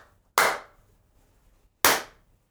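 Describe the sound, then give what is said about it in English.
Two sharp, loud hand claps made to sync the audio, about a second and a half apart, each a bright crack with a short fading tail, in an otherwise quiet moment with no talking. “But now it was like too much clapping.”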